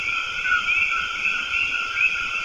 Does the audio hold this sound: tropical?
yes